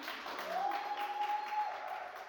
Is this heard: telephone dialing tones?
no